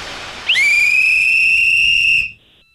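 A loud, shrill whistle is blown during a phone prank call in one long, steady blast lasting nearly two seconds, its piercing high tone holding level before cutting off abruptly; no one speaks.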